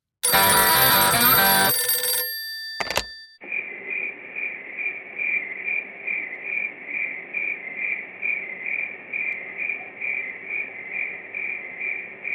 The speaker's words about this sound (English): That's all we've been hearing lately, huh? Crickets in Oakland.